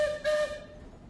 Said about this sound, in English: And where better to bring you, for this week's slice of the east of England's finest, than from the footplate of Eastern Promise's very own steam locomotive, the Excelsior.